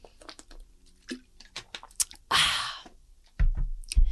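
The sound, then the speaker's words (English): Someone drinks water: a string of small wet clicks and swallows, a brief splashy rush of liquid midway, then a couple of heavier gulps near the end. No talking. “Hold on, I need some water because I'm so sad. My throat's dry.”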